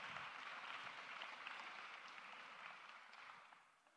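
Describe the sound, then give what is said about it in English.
An audience gives two people a sustained round of applause as they sit down, a dense wash of many overlapping hand claps at steady loudness that gradually tapers off toward the end. “Let's give these two a round of applause, please, as they sit down.”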